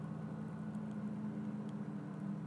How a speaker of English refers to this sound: oh, now they're mowing the lawns. Of course they're going to start mowing the lawns when I'm recording things. Can you hear that? That's with the window closed.